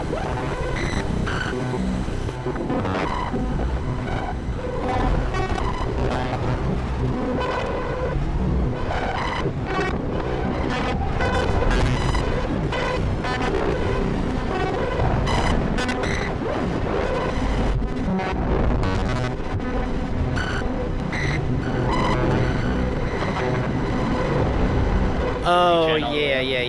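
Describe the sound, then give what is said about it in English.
A dense, continuous wash of processed sound from the shimmer mode of the Electus effect, with shimmering reverb and pitch-shifted delay repeats. It stays loud throughout and ends in wavering, rising pitch sweeps. “You get kind of a one more pitch shifting delay kind of effect. See, this already sounds cool with the reverb.”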